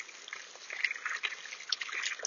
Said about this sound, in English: Actually, going to put some water in the bird bath first, though.